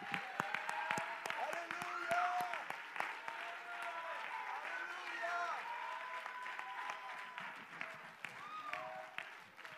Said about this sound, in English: Let's clap for Jesus, everybody.